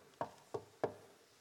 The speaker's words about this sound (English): The door is closed. And then comes the knock.